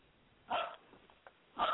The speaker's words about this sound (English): Okay, of course. She's licking my hand now.